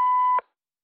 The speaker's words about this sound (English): Leave your message after the beep. Not the beep I just said. There'll be a physical beep.